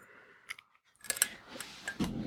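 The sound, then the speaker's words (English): A series of bright, ringing martini glass clinks, a few scattered taps followed by a denser cluster of sharp, high chimes with brief resonant tails, heard alone without any talking. “You hear the martini glass clinging in the, what a promotion.”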